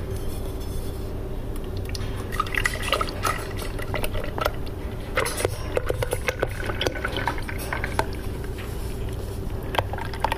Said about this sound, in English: Okay, what I'm going to do... is I'm going to start pouring it in the bucket. I'm going to do it kind of slow.